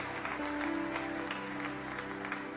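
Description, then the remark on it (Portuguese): An audience claps steadily in a dense, continuous wash of applause, with a sustained low hum or held tone running underneath throughout. “Como igreja, nós te adoramos, e antecipadamente, por aquilo que o Senhor já fará nesta reunião, nós aplaudimos o teu nome precioso, em nome de Jesus.”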